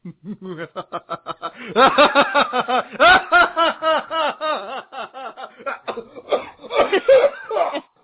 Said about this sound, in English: That's pretty good, except for the cough at the end.